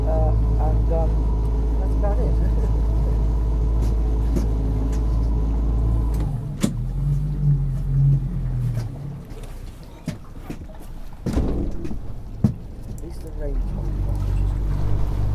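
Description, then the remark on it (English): A boat motors steadily along the coast toward Westward Ho, its deep engine drone and low hum continuous, with splashing and wind gusts and people talking faintly over the rumble. “Keep your arms, legs and bits inside the boat.”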